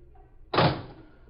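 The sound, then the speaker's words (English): A single car door slams shut as people get out of their car, parked down the street from an old four-story tenement building: a sharp, heavy thunk that rings briefly and fades over a low background hum. “They parked down the street from the old four-story tenement building and got out of their car”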